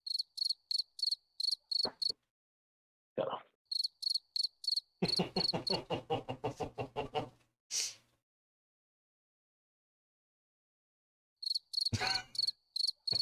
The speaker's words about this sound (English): Yeah, you better just keep the crickets going.